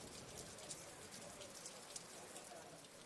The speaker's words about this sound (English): The rain has started to die down, but it is still raining.